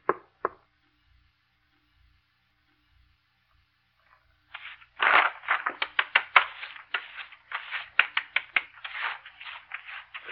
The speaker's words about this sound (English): Tap your foot all you want to. Sit and stare at me. Can't drive me away. Go on, tap some more.